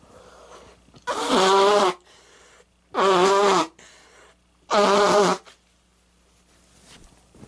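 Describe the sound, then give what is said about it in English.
Someone with allergies blows their nose three times, each a loud, honking burst of about a second with a buzzy, wavering pitch, separated by short quiet pauses. “Hold on, nose blow. I'm about to blow my nose.”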